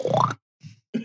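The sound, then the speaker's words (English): A person mimics a pig with three quick, nasal grunts: a loud, rough first snort, a softer one after a short pause, then a final punchy grunt. “Can you do a pig impression?”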